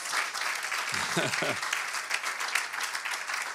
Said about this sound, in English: I want you to give these musicians a hand clap of praise. Amen. Did you appreciate that? Good music. Amen.